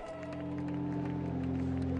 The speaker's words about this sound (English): A dense morning fog hanging over St. Peter's Basilica. Reflective of the mood below, breaking the silence, a soft applause as the Cyprus coffin of Pope Benedict XVI was moved into view.